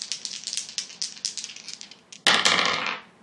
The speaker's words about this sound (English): So we roll for Harrison Ford? Sure. Let's see if the dice agree with him.